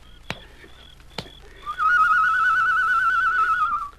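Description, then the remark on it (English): Two sharp clicks, then a person whistles a sustained, warbling mid-pitched note for about two seconds, imitating a bird call. The trill wavers steadily and stands alone, with no talking. “Did you make that noise? Yes. Sounded like a bird.”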